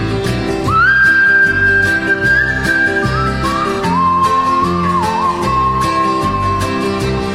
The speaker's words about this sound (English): Grandma whistling, what a friend we have in Jesus.